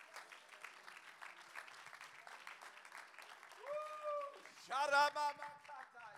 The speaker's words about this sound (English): Why don't we clap our hands and thank God right now for an overseer?